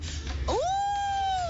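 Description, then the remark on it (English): A child's voice imitates a wolf howl: one clear cry that swoops upward and then holds a long, steady high note, with faint low rumble beforehand. “And a wolf?”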